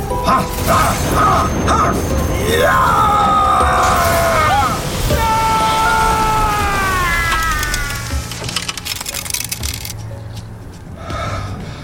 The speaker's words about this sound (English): Lightning. Oh, no. No. The atmospheric pressure has dropped significantly. Okay, stop the lightning bolts. Please! I'm begging you!